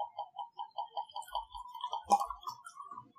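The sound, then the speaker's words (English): Whiskey glugs out of a bottle into a classic old-fashioned glass from IKEA in a quick, steady run of hollow gurgles, with a brief brighter splash or clink partway through before the pour tapers off. “I actually heard this whiskey getting poured.”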